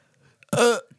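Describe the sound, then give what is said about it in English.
A single loud, abrupt burp with a tight, hiccup-like catch, voiced and resonant for under a second, with no talking around it. “Those are burps, but they don't sound like... They sound like I'm, like, forcing a weird hiccup out.”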